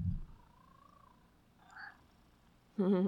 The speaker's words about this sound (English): Can you hear him purring? That's him purring.